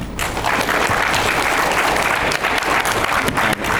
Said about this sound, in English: we could have like a separate round of applause for my hair. That would be great.